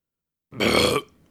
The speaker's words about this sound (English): … suppressed a small belch, apologizing for being crude.